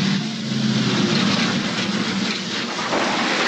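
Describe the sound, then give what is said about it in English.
A heavy truck rumbles loudly, its deep engine drone and broad hiss steady at first, then the low hum fades away as it comes to a stop. “there's a truck stopping.”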